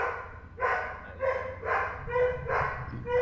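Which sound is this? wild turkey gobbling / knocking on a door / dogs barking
dogs barking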